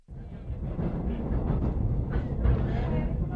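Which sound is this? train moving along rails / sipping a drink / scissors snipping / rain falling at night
train moving along rails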